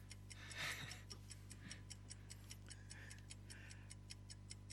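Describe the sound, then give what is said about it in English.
A quiz countdown timer clock ticks steadily, roughly four crisp ticks per second, with a brief louder whoosh early on and a low hum underneath; no one speaks. “We've got 25 seconds left on the timer.”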